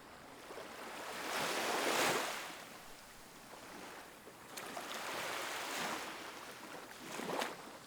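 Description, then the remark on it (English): Waves roll in and wash up on the shore of a tranquil, sunlit beach, swelling and receding in slow broad surges about every few seconds, with a steady hiss of surf in between and no voices. “Sunlight dances on the waves, creating a shimmering pattern of light and water.”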